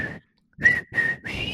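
A person attempts to whistle, producing a few short, breathy notes in a halting tune, with airy hiss around each tone and brief gaps between them, fairly loud.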